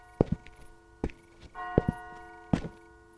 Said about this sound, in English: He paused in his wanderings as he heard a clock, somewhere in the distance, begin to strike the hour. He listened intently as the preliminary peals were sounded and the clock finally tolled midnight.